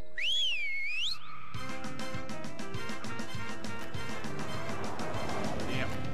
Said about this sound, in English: Is it you always whistle when I'm in the middle of a shampoo?